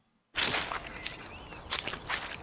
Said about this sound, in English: Squish of mud.